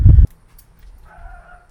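A single loud, muffled dog bark from inside a house on a cul-de-sac on 45th Street, heard at its front door, followed by near-silence and a faint, thin tonal sound in the background.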